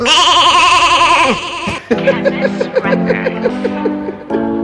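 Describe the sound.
A loud, quavering goat-like bleat wavers for over a second, then cuts off into busy voices and a rhythmic, tonal background.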